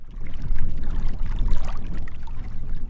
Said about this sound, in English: It's a cool, windy day in the foothills. Ripples and waves are blowing across the little reservoir outside of Superior's water treatment plant.